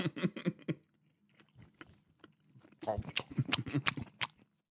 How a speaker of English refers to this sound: The sounds of us chewing.